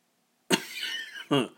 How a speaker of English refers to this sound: Ooh, I don't like coughing. Gosh. Well, coughing is better than wheezing.